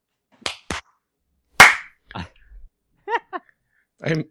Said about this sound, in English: I'm going to record right now. You ready? All right, everybody clap when you're recording.